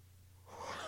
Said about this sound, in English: You caught me in the middle of a yawn. Man, am I boring you?